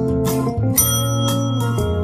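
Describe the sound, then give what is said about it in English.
A bell rings loudly and repeatedly, about four bright strikes in quick succession, each leaving a sustained metallic ring that overlaps the next. No voices accompany it. “And if Shay's recaps are read without a single misstep, ring the bell.”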